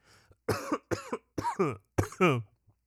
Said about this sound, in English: I'm sorry I had to cough.